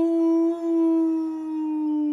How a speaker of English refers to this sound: You guys hear some howling in the distance.